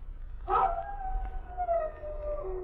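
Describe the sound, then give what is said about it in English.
A dog named Barnabas lets out one long, drawn-out howl that starts with a louder burst and then slowly slides downward in pitch, held over a steady low rumble with no one speaking. “When Barnabas howls, 'tis a bitter cold that spills from the moors.”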